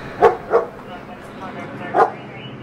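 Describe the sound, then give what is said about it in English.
A police dog barks three times, two sharp barks in quick succession and then one more after a short pause, loud over a steady low background hiss, as officers hold the dog right by a man's face during an arrest. “Oh damn, they got the dog right by his face.”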